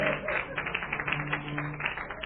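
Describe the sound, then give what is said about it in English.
A crowd claps in a steady, dense patter that keeps up throughout at a moderate level, with a faint low murmur of voices underneath. “This clapping is not making me welcome.”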